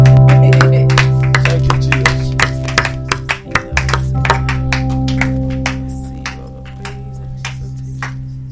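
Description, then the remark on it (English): An audience claps steadily as an offering of clap unto the Lord, a dense run of sharp hand claps over a sustained low organ-like hum, with no voices, the clapping thinning out toward the end. “Give him an offering of clap unto the Lord. Just clap unto the Lord.”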